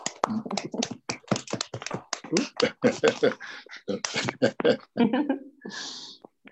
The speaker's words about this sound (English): And I believe there's an applause going on around the country right now. Oh, yes. Uh-huh. So we'll just pause for 10 seconds to applaud our health professionals around this country.